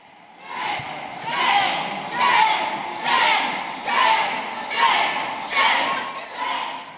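A loud crowd of protesters outside a legislative committee room chants "shame" in unison, around eight rhythmic shouts spaced under a second apart, with a steady murmur of crowd noise between each cry.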